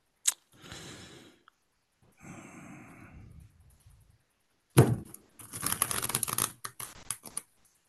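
Rustling and riffling of a deck of cards being shuffled in several bursts, with a sharp snap and a denser flurry of card noise toward the end, no voices.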